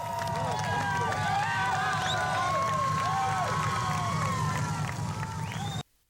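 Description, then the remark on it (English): A large outdoor crowd roars and cheers in approval at Ted Bundy's execution by electric chair, with whistles and overlapping shouts rising above a steady rumble of many voices, loud, cutting off abruptly near the end. “And as the crowd roared its approval, Ted Bundy and the people who waited so long to see him dead said their final goodbyes.”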